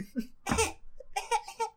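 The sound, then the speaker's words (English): A single sharp cough bursts out abruptly, followed by a few short breathy vocal sounds, like a stifled laugh or throat clearing. “I almost had a cough leg in the middle of it.”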